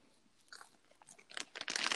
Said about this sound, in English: Really, let me eat my popcorn piece. I'm just gonna hurry and eat this popcorn because she's attacking me. So I'm sorry for the chewing.